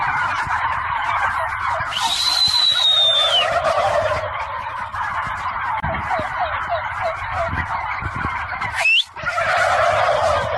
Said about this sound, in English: And every time this guy whistles, guess what every turkey does? They gobble. Because they don't want to be the one that doesn't gobble. And every time they hear this dude whistle, they gobble.